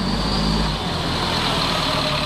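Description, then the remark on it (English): A large biodiesel-powered bus engine runs steadily, a loud, continuous low rumble with a broad mechanical hiss on top. The deepest throb eases slightly partway through. No one speaks. “Operation Free's bus, powered by biodiesel, has rolled through 22 states so far, drumming up support for legislation on clean energy and climate change.”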